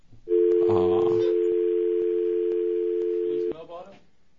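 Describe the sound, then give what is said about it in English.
A loud, steady telephone dial tone hums continuously for about three seconds as someone tries to reach the operator, with a voice talking briefly over its start and again right after it cuts off. “Let's see if we can get the operator on the phone.”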